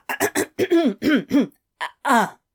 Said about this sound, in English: coughs.